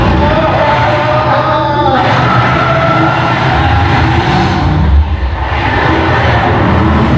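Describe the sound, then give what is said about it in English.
A car roars along at speed, its engine loud in a steady, dense rush of noise, with a brief higher whine early on and a slight dip near the end. “You are liable for any damages to the vehicle, so please stop the car. Slow, really slow down.”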